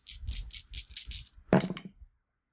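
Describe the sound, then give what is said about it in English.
Dice rattle in a cup with about six quick, clicky shakes, then spill out in a louder clatter that tumbles briefly and settles into silence. “Let's just hope the dice aren't crappy.”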